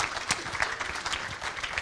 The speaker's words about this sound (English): So, Mom, I would like you to come up. You can clap, for sure.